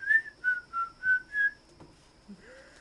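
A person whistles a short tune of five clear, evenly spaced notes, prominent, followed by a faint trailing whistle with no talking.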